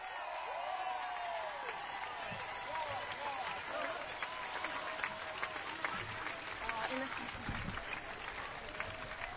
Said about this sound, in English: While my family and partner's family is coming up here, can we just have a massive round of applause for all the organisers who've pulled off this incredible march today?